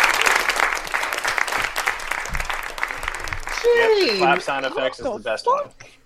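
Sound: clapping sound effect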